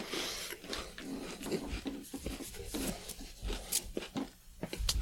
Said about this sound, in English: As … chews a cookie